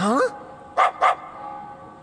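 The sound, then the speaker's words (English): A dog gives two quick, sharp barks in close succession, loud and near, after a brief voice at the start; otherwise the background is quiet. “Hey, isn't this Rita's dog?”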